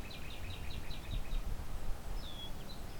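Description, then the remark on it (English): A black-billed cuckoo's call, not its song, given every few seconds while it preens a few feet away: a quick run of soft, high chirping notes, then a single downslurred note a moment later, faint against low background rumble with no one talking. “And it makes that call every few seconds while it's preening.”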